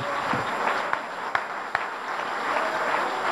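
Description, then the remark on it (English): An audience claps their hands to the Lord one more time before being seated, a dense, steady wash of applause with a few sharper individual claps standing out. It holds at an even, moderately loud level throughout, with no voices. “Let's clap our hands to the Lord one more time before we're seated.”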